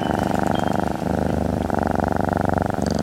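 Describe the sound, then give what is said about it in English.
A low, rumbling musical tone imitating a cat's purr, from music written for cats by a classical cellist, pulsing in rapid steady waves, loud, with a brief dip midway and no voices. “So I have different ways of creating purr kind of sounds.”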